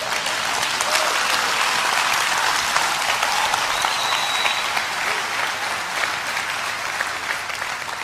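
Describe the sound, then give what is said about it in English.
A crowd applauds steadily, a dense, even wash of many hands clapping that holds at a strong level for the whole stretch, fading only slightly near the end. No voices stand out. “I hope I wasn't rude cutting off your applause, but.”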